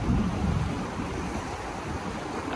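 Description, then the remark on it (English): Ocean waves break on rocks on the coast of Australia in a steady, roaring wash of surf, fairly loud, with wind buffeting the microphone and no voices. “When you're on rocks, never stand with your back to the waves.”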